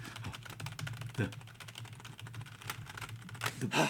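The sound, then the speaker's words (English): Fast, forceful typing on a computer keyboard, a dense flurry of clacking keystrokes with a few heavier thumps, steady throughout with a low hum underneath. “He's doing CPR on his keyboard.”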